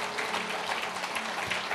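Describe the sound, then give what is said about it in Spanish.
A large church audience applauds together for God in a steady, dense wash of clapping that holds at an even level throughout, with no voices standing out above it. “Denle un fuerte aplauso a Dios.”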